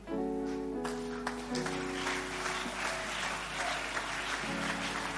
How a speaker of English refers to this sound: Increase that clap offering.